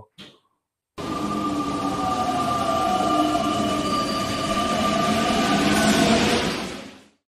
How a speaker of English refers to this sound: So it's time for our second favorite segment, but my favorite segment, Chicago Loop. Let's go on a train and head to Chicago.